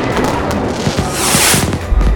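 Fireworks at the Dadaocheng Summer Festival bursting in a loud, continuous barrage, with sharp cracks and popping, a bright crackling shower midway, and a deep boom near the end. No voices.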